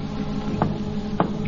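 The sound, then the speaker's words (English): Two distinct knocks tapped as a signal on a wooden outer door, spaced about half a second apart, heard over a steady low hum with no voices present. “Now they hear a signal being tapped on the outer door.”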